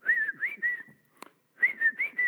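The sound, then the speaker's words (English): A person whistles a short family signal tune: a rising, wavering phrase, a brief pause broken by a small click, then the same phrase repeated, with no talking. “My dad, since we were little, we have a family whistle.”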